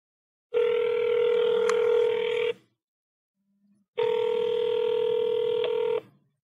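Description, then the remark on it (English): A phone call to a woman rings out twice: two steady, electronic ringback tones, each about two seconds long, separated by a short silence. Clear and fairly loud, with no one speaking. “I'm going to be so disappointed if she doesn't pick up the phone.”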